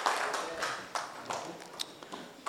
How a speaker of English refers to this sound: Clap your hands together for Jesus and please be seated.